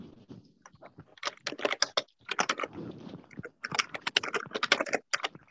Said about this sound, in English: And somebody's typing, if you could mute yourself, please.